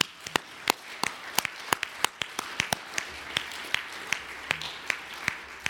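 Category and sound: crowd, audience applauding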